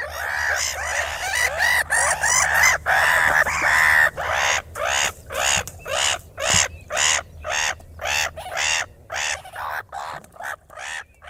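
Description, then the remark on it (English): Raucous, harsh squawking calls of black-headed gulls repeat rapidly and loudly, overlapping at first like a noisy flock, then settling into a steady run of short, grating cries. “I can't hear a black-headed gull without thinking of Watership Down and the squawks that those cartoon gulls made throughout the film”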